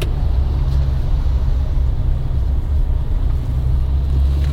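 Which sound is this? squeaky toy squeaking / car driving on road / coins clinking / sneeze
car driving on road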